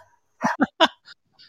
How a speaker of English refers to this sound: My dog just started going crazy.